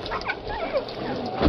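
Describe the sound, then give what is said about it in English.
A collie puppy, found in a canyon with a broken leg now in bandages and splints, lets out a quick run of high, thin yips and whimpering whines, fairly clear, with a louder burst right at the end, in sheep country. “Trying to find a home for this collie pup.”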